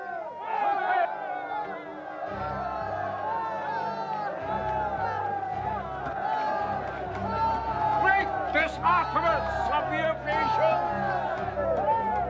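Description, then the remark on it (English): A large, furious crowd in a city shouting and clamoring in uproar, many overlapping voices raised together in a loud, continuous din, with a low rumbling undertone joining in after a couple of seconds. “When they heard this, they were furious and began shouting.”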